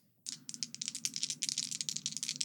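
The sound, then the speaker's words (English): Dice rattle and clatter in a steady burst of quick, bright clicks that start abruptly and keep going for a couple of seconds as they are rolled for damage in a game, with no voices over them. “Go ahead and roll me damage.”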